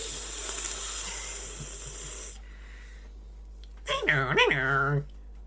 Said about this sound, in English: Dial-up telephone modem. Beep, beep, beep, beep, beep, beep.